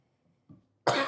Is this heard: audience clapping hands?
no